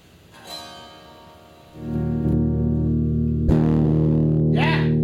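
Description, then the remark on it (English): A distorted electric instrument rings out, starting with a quieter strum before a loud, sustained, fuzzy chord kicks in around two seconds and holds, with brief scraping attacks layered over the drone. “Yeah, let's get some fucking distortion.”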